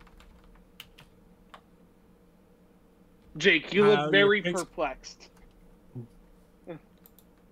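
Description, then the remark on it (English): Scattered keystrokes on a computer keyboard tap lightly, pausing while a man speaks briefly, then resuming with a few more clicks. “Where am I typing? Oh, I'm not typing on the right screen.”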